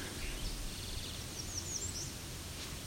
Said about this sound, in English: Sounds like a song sparrow was in there too.